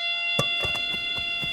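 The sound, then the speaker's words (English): A steady electronic buzzing from a base in blind baseball, which starts buzzing after the batter hits the ball so the batter can run toward it, drones continuously at a fixed pitch, rich in overtones, with a sharp knock near the start and several softer thuds spaced through it. “As soon as it starts buzzing, they run toward that sound.”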